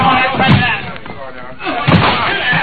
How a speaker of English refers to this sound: It's locked, Dan. All right, everybody, we've got to break that door in.